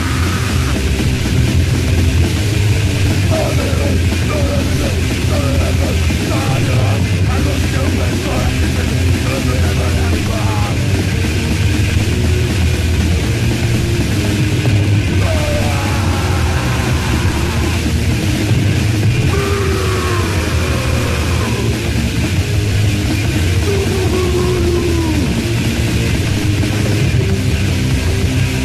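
A raw grindcore punk band playing live in a 1988 Peel Sessions radio session, two songs: a relentless, loud wall of distorted guitars and pounding drums with no breaks, and harsh shouted vocals buried in the noise.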